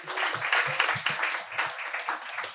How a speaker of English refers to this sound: So we're going to lift up the subject matter right now for some heartbreaking good readings and give a big warm round of applause from the LIC reading series